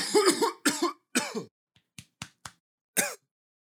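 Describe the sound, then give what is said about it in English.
A bout of harsh, sputtering coughs after choking on saliva: three loud, raspy hacks, then a string of shorter, sharper coughs and a final strong one, with no talking. “I don't have COVID, but I just swallowed my own spit wrong.”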